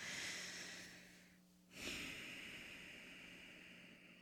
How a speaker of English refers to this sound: Just really bring in those inhales and really let go of those exhales. Noticing how it feels in your body, noticing the physical sensations of the inhale and the exhale.